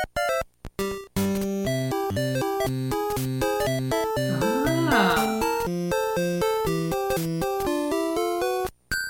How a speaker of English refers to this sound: The Game Boy game that Mike was playing was Super Mario Land, and you can tell because they used the background music for the game